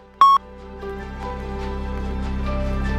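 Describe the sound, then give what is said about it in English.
A single short, loud electronic beep at a steady pitch, like an answering machine tone, followed by a low humming background with faint tonal murmurs. “If you have any stories for me, you have a minute after the beep. Here's the beep.”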